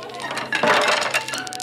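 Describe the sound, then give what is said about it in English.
A marble ramp is knocked over: a clattering cascade of small hard objects clinking and knocking together, a dense burst of bright taps that swells midway and then scatters into fewer light clicks. “You just knocked over my marble ramp!”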